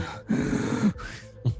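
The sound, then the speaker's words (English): Heavy breathing of the film character Neil: a long, loud, rasping breath, a softer one after it, then a short sharp gasp, with no talking. “Yeah, you can like, you know, when you can hear your breathing, Neil's got that going on.”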